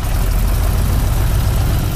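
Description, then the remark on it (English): The propeller engine of a four-seat open-cockpit aircraft giving rides with the Waldo Wright Flying Service drones steadily and loudly, a continuous low rumble with a rough, throbbing texture and a broad roar of rushing air, holding constant throughout with no voices. “There's room for four people in it, and you have an open cockpit aircraft ride that it will stay with you for the rest of your life.”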